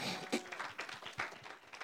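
A church audience claps together for the Lord Jesus in a dense, steady patter of many hands, loud, with a murmur of voices underneath.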